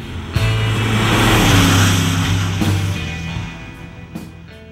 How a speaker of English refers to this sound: The car seems to recognize him. Sir Sterling slips the clutch and roars off.